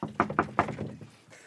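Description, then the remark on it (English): Three quick, sharp knocks land on a front door, followed by a softer rattle and shuffle as the door is opened. No one speaks. “We've come to the door.”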